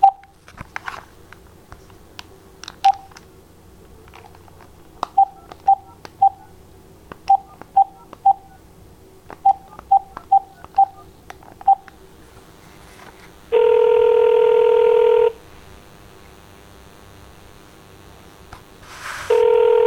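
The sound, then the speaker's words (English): A rapid string of short, clear touch-tone beeps as a phone number is dialed to call someone back at home, then a steady ringing tone sounds for a couple of seconds and starts again at the end. “I haven't had issues, but I will hang up and I'll try calling you back again at home.”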